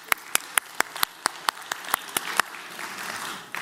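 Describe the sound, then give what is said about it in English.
Audience applause for a woman who named two of the top three fastest growing religions, led by about a dozen sharp, evenly spaced claps in a quick steady rhythm, which then give way to a softer, scattered wash of clapping that trails off. “Okay, let's applaud her.”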